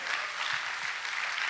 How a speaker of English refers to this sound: Yeah, go ahead, clap for Jesus.